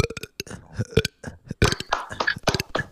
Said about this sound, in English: Burp. Oh, my God.